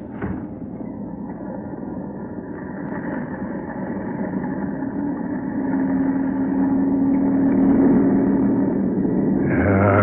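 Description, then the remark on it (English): An airplane engine runs steadily before takeoff on flight 7 to New York at gate 2, running five minutes late, a continuous low, throbbing drone with a humming tone that swells louder partway through and holds there, with no voices. “Why don't they get this thing into the air? I've been hiding all day, waiting for darkness. Waiting here to take this plane to New York.”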